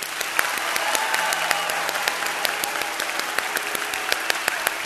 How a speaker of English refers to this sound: And then he goes, all right, now we need the loudest clap you got. Come on.